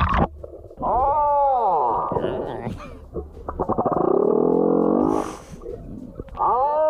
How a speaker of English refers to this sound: And this guy is in the water. He actually got real close to this whale to hear him sing his heart out. He's looking for a mate.